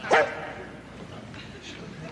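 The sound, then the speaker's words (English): A single sharp, loud bark from Boomer the dog right at the start, followed by a low, steady background hum with no further barking. “Some pretty weak dog humor.”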